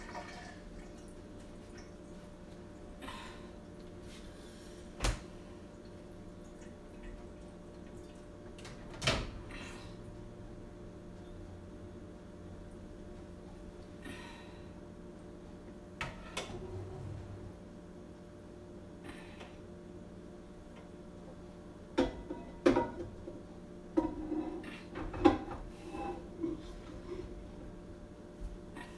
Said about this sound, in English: zap this whole entire bowl into the microwave. It's entirely really heavy.